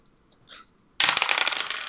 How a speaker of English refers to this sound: Oh, dice dropped off the table.